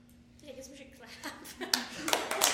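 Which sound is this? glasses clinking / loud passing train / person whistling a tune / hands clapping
hands clapping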